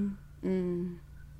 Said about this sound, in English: Do you hear my cat talking?